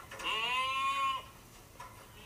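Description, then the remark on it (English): A single drawn-out goat bleat, loud, with a strained, almost human-sounding quality, lasting about a second before fading into quiet background with a faint click. “This poor little goat was just sitting there with his head stuck in the fence, like perfectly fine.”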